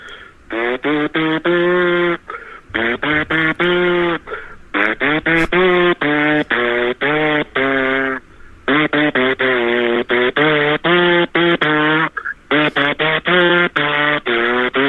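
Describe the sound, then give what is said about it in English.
A person buzzes their lips like a tuba mouthpiece, producing a long run of short, pitched brassy notes that rise and fall with brief gaps, sounding slightly tinny as if heard over a phone line. “Well, you can play the tube with your mouth, right?”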